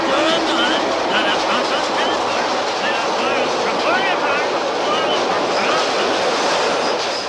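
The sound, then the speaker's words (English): A subway train roars past during Oscar's cussing joke, a loud, steady rush of rumbling noise with thin metallic squeals and rattling throughout, and indistinct voices, Carol Spinney voicing Oscar, buried underneath. “we get the Oscar cussing joke as the train goes by”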